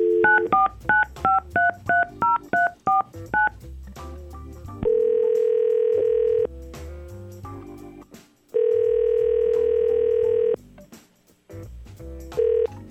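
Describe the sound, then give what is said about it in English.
A rapid string of about a dozen touch-tone dialing beeps, followed by two long, steady ringback tones separated by a pause, clear and close with no voices. “I'll try to call Aaron right now and see what's going on.”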